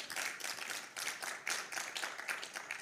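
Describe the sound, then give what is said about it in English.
Steady applause from an audience for the event's funders, the City of Saskatoon, SaskArts and the Canada Council for the Arts, a dense crackle of many hands clapping at once, fairly soft and even throughout, with no voices over it. “Round of applause for those funders.”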